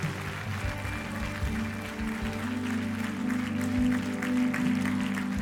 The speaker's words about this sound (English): If you believe in miracles, give the Lord a clap offering right now. Amen.